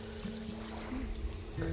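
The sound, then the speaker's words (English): Soft water lapping gently at a beach on a mild day with almost no waves and a smooth, lake-like sea surface, a quiet continuous wash with a faint low hum underneath and no distinct breaking waves. “Just a very gentle, it's like a lake today.”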